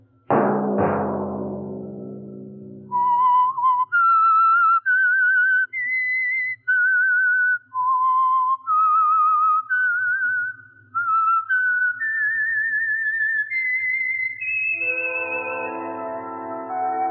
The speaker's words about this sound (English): Let that whistle be your signal each Sunday for the Signal Oil program, The Whistler.